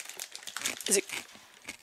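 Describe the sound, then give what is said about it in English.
A bag of grain-free chili lime chips crinkles and rustles in a quick burst of crisp, papery crackles, peaking briefly before settling into softer crinkling. “This is grain-free chili lime chips.”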